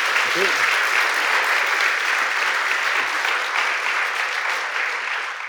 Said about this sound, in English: So first, I would like you to make Tom very welcome with another tumultuous round of applause.